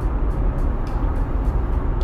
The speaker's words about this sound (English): The nice sounds of the roads and the cars around. It's like even a honk you can be grateful for.